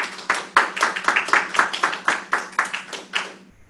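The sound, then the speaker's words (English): Applause from an audience for a residency program award recipient: a steady run of brisk, closely spaced claps blending into a continuous patter for a few seconds, then cutting off abruptly, with no voices. “Please give her a round of applause.”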